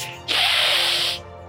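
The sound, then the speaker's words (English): A person imitates a hiss with one steady, breathy hiss lasting about a second, while grabbing two others by their necks in a role-playing game. It starts abruptly and fades off at the end, with no talking around it. “I'm just going to grab them by their necks and kind of hiss at both of them.”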